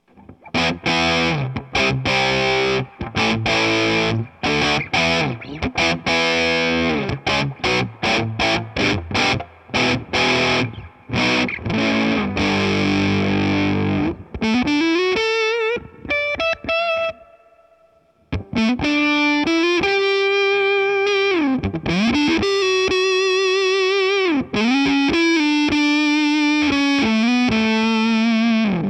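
Distorted electric guitar through a Boss Waza-Craft Limited Edition Tone Bender fuzz pedal, first chugging rapid, punchy chord stabs, then sustained, singing lead notes with bends and vibrato, loud throughout with a brief gap mid-clip.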